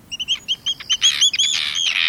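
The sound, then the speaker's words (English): Arctic tern calls: a quick series of sharp, high-pitched chirps that swells into a harsh, continuous chattering, fairly loud, with no voices. “In September, Arctic terns fly south over the ocean from Alaska all the way to Antarctica.”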